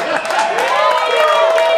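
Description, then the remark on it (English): A live audience cheers and applauds, with overlapping whoops and voices steadily loud over a bed of clapping throughout. “Don't applaud this shit.”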